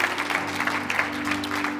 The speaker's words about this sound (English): Come on. Yeah, clap for joy.